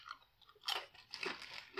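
Crunchy crab-flavoured chips being chewed, with sharp, crackling bites around the middle and end of a short, otherwise quiet stretch. No one speaks.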